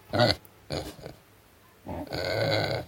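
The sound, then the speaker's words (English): A Vietnamese potbelly pig named Fiona grunts: a few short, rough grunts, then a longer drawn-out, squealing grunt, with no talking. “As promised, a star player in this passage is Fiona, the Finney's Vietnamese potbelly pig.”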